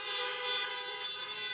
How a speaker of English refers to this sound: I thank God for all the volunteers. Can we give them all a big honk and a big amen? Come on, give them all a big amen.